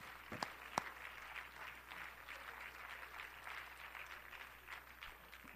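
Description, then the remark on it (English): A church audience applauds together during a service, a dense, steady patter of many hands clapping with a couple of sharper, louder claps near the start, sustained at moderate volume throughout. “Let's clap our hands to the Lord.”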